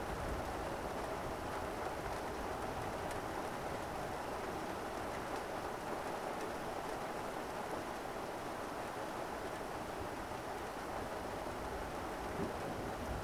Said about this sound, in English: The power of the storm blurs everything outside and makes you retreat from the covered deck into your room.